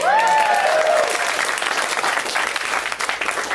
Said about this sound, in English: Amazing comic coming up next. Please already start clapping. Continue the beautiful applause. Let's hear it for Steph Tollef. Give it up.